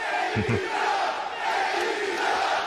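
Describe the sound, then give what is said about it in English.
A large arena crowd at an AEW wrestling event roars steadily for Samoa Joe as AEW World Champion, a dense, loud wash of voices that holds without pause, with a couple of brief low thumps near the start. “Oh, getting a lot of praise from the crowd here today.”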